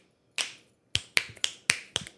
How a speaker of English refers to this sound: My snaps are pretty loud. She's not clapping her cheeks. She's snapping. It was like closing a door.